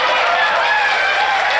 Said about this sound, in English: Again, is that an applause line? It isn't. To the audience, Caitlin Collins was the liar, and Trump was the one bravely defending the truth as they ate it up.